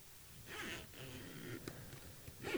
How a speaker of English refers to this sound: What does that sound like? Is that a zipper? That is a zipper. But a zipper to what? What's inside of the zipper? Xbox Elite. Oh, your brand new, my brand new shiny controller.